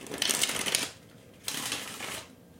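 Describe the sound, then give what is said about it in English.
Two bursts of crisp, rapid riffling, a deck of cards being shuffled twice with a brief pause between. No one speaks. “So I'm going to go ahead and shuffle.”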